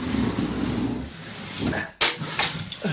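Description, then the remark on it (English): A heavy file cabinet is pushed across the floor of an old courthouse with a low, grinding rumble, then slams into place in front of the door with a sharp thud, followed by a few lighter bumps and shuffles. “Push this file cabinet in front of the door.”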